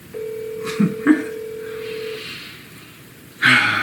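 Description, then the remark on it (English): A phone on speakerphone, dialing and ringing while calling a woman, sounds a steady electronic tone for about two seconds, broken by a couple of short dialing beeps, before a louder burst of noise cuts in near the end. “Just to make you happy and to prove my point, I'll call her right now. I'll put it on speakerphone.”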